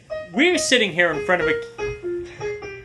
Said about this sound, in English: Summer is ending and the ice cream truck is going away. I just want to say that. The ice cream truck is going away.